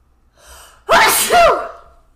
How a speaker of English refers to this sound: I'm going to sneeze.